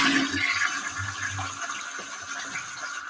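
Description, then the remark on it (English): A toilet flushes, a loud rushing gush of water with a low gurgling churn underneath that holds steady for the full few seconds, with no voices. “Flush that fucking pussy down the toilet.”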